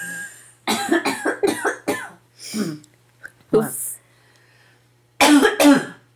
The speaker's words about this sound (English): Sorry, that was going to be a big cough, and I didn't want to. We'll cut that out.